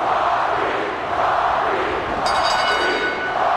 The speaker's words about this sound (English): Do you hear the people? Do you guys hear the people right now? Do you hear who they're chanting for?